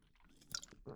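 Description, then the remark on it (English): A quick sip of Red Bull energy drink just after midnight: a couple of soft, wet slurping and swallowing sounds in quick succession, quiet, with no talking. “Ah, having a little sip of Red Bull at 12 past midnight.”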